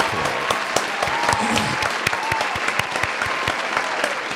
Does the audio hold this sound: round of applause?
yes